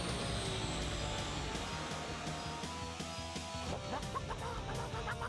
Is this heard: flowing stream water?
no